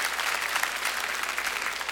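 A crowd claps steadily on a Sunday morning, a dense patter of many hands at a fairly loud, even level with no voices over it.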